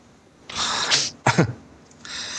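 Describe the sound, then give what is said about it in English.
A loud, harsh cough bursts out in two rough, breathy blasts, followed by a sharper voiced hack and a softer breath trailing off, with no talking. “And with that cough, I think we're with out of that here.”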